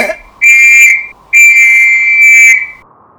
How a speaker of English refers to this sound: did you just use the emergency whistle?